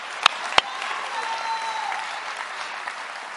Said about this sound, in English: Somebody clap your hands with me right now.